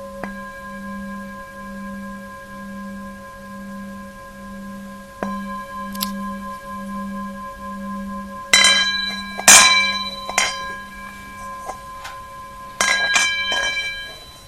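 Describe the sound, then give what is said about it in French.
A meditation bell rings out in a long, sustained tone with a slowly pulsing low hum, later joined by several sharp clinks and knocks. No one speaks. “Est-ce que c'était agréable, le son de la cloche?”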